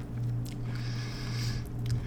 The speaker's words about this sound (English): It's like a crunchier. I thought it tasted like butter pecan, but then when I crunched into the praline, it was much sweeter.